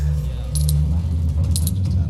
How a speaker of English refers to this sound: Sweet. Coins.